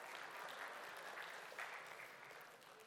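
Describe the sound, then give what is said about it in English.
Light, scattered applause from an audience for the baby boomers among them, a steady patter of claps at moderate level that holds for a few seconds and tapers slightly toward the end, with no talking over it. “You just get a little applause thrown in at the end.”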